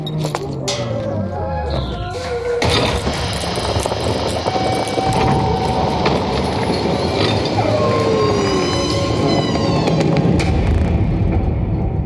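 A creaky door of a decrepit old building slowly swings open, giving a long, loud run of squealing groans that bend up and down in pitch over a rough, scraping rattle, with no one speaking.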